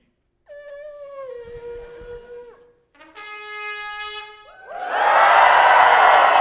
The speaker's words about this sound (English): And then there was the shout.